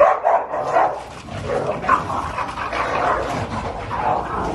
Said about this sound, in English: This CNN exclusive video, evidence from a close case, shows two dogs getting ready to fight.